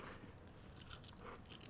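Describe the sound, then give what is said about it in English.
Crunching of a crispy Taco Bell cinnamon twist bitten into a microphone, with several brittle, crackly bites and chewing bursts in quick succession, and no talking. “Can I crunch my cinnamon twist into the microphone?”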